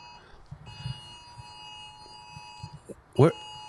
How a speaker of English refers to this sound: Oh, no. This is my phone now. Oh, these were iPhone alerts. That's what these were. Oh, Your phone came across first. For what? It's a silver alert.